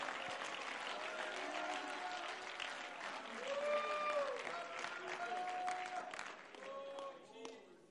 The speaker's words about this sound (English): Come on, let's clap our hands and give a little praise to the Lord.